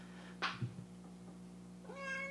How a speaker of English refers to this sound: Cats, they never meow when you want them to. There you go.